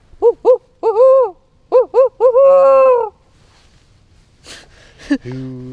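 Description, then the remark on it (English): A person loudly imitates a barred owl in a small forest on Bainbridge Island, west of downtown Seattle, giving a rhythmic run of short and drawn-out wavering hoots, followed by a few breathy sounds and a brief low vocal note. “suddenly belts out the best barred owl call for me.”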